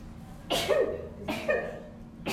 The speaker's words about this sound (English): Yeah, I'm a funny sneezer. I sneeze like a cat.